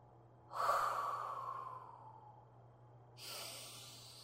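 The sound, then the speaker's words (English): A long, slow exhale tapers off gradually, followed by the start of a deep inhale, as a person controls their breathing to clear their mind. The breaths are steady, with no talking and a faint low hum underneath. “Now I begin to control my breathing.”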